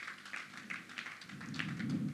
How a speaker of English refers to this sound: Yep, that's worth clapping about.